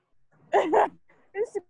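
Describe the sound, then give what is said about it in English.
A dog going across a walkway gives a quick double bark, then a higher, shorter yelp a moment later, fairly loud with no other sounds around it. “I'm here with the dog going across the walkway doing my own.”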